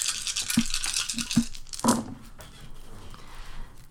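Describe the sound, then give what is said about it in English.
Hard little clicks and clatters of dice tumbling, rolled for a charisma performance check in a game, with several sharp knocks in the first two seconds before the rattling fades into a soft, scattered rolling noise. Nobody speaks. “Sorry, there was a dice up there already.”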